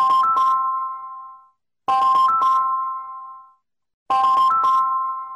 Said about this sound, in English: You know, you mentioned cell phones. You actually say in your book that you know the guy responsible for this well-known ringtone.